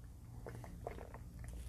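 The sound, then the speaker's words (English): A small sip from a drink, heard as a few soft, wet mouth clicks and faint slurping over a quiet background hum, with no talking. “Just a little sip of what hair?”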